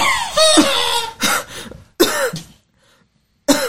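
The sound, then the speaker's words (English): A person imitates a harsh coughing fit of a poisoned character waking up coughing: several raspy, throaty coughs in quick bursts, a brief pause, then one more cough, loud. “So you wake yourself coughing for 10 points of damage.”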